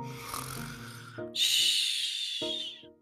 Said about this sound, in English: He snuggled down in the warm leaves and pine needles and in no time at all was snoring gently.